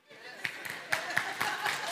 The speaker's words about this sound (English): Yeah, we can clap for them. That actually is another thing that they need to get better at, is clapping.